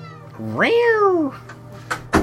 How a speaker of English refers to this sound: It, Goddamn cat.